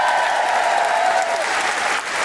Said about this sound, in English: So a big round of applause to Rose Butterfeo for showing up.